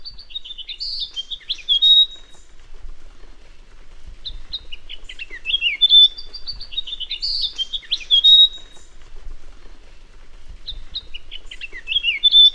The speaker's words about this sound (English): And now you are listening a beautiful couple of Myotlipis coronata.